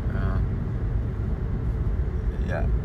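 A car drives slowly along a snow-covered road, heard from inside as a steady, low road-and-engine rumble that stays even throughout, with a couple of faint, brief vocal sounds.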